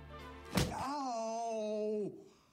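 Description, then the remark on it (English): A single heavy hammer strike during a hammer test lands with a dull, solid thunk, followed at once by a long, steady, mid-pitched vocal groan that holds for over a second before cutting off. “The hammer test.”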